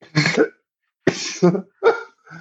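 Several harsh coughs in quick succession, three main bursts with a fainter one trailing off, each separated by brief silence and no talking.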